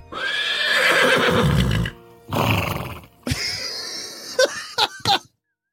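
A horse whinnies loudly, a long wavering neigh followed by several shorter breathy calls and snorts that end in quick, sharp bursts.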